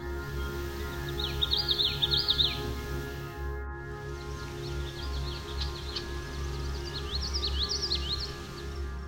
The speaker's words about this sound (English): We also heard the common yellowthroat song, which is often described as sounding like witchetty, witchetty, witchetty.